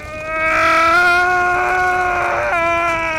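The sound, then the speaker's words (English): A man lets out one long, loud scream of pain, a strained, steady howl held for about three seconds before it cracks and trails off, with no other voices. “The hound screams in pain.”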